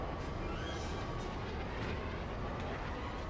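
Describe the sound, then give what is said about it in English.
A loud, steady hiss of a racing vehicle's air brakes in a racing video game runs through the whole stretch, mixed with a low rumbling engine and a few brief sharper bursts of noise, with no one talking. “B makes a cool sound, but I think that's just my air brakes.”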